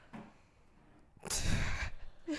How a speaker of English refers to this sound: just had the fattest yawn after that. Was that boring of a sentence? I'm so tired